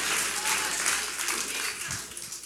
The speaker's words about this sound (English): You should clap your hands and say, thank you, Jesus, I can hear him.